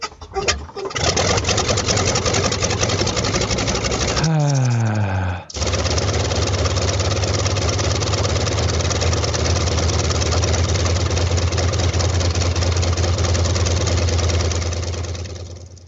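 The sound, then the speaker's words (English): A loud radial engine of a DC-3 tail-dragger aircraft running steadily, a deep rumbling drone with a rapid pulsing beat, briefly dropping in pitch midway before settling back to a constant roar. “let's play the engine noise from that quickly”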